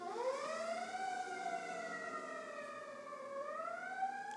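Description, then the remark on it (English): A fire truck siren wails steadily as the truck goes by in California, its rich harmonic tone gliding slowly down in pitch and then sweeping back up, sustained and loud with no talking over it. “Got a fire truck going by.”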